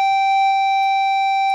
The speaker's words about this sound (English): Excuse the bell, I'm at the school right now.